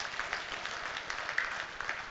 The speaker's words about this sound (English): There they are at the chapel. And they are, yeah, I'll go ahead and applaud. That'd be great. I'll tell them you did so.